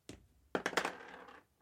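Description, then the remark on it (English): A pencil is thrown onto a hard surface: one sharp tap, then a quick cluster of bouncing clicks with a short rattling ring, and a final faint tick. Fairly quiet. “Yeah, I'm throwing my pencil.”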